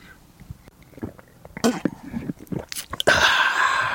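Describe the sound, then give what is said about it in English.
Quiet mouth sounds build into a few wet slurping sips of hot coffee, followed by a long, breathy, satisfied exhale. No one speaks. “And now, a pause for a sip from some hot coffee.”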